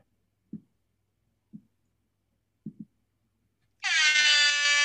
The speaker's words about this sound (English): This is not post-production, folks. That was a genuine air horn